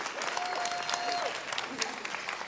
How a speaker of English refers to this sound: You don't have to applaud. Yeah, there you go. Okay, yes, way to go.